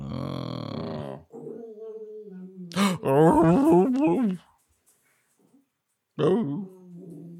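dog growling

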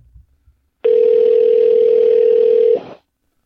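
telephone dial tone

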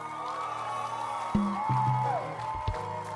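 audience clapping and cheering

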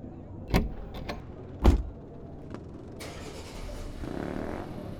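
car sounds

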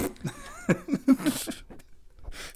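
fart sound effect

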